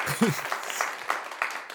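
A slow, half-hearted clap: four or five evenly spaced hand claps, moderately loud and sharp, after a short low vocal murmur at the start.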